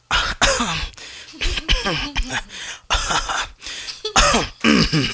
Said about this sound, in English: Now with COVID and coming out of COVID, now into monkeypox or whatever other strands of COVID we're in, everybody is just blatantly, without any care in the world, giving us the most violent coughs ever.